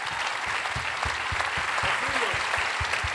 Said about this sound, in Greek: Δώσετε ένα χειροκρότημα, είναι γίγαντας.